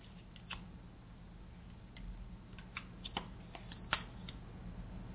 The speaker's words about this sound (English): So I am pulling the goddess cards. And as I shuffle the cards, I bless each and everyone on the show and ask for guidance.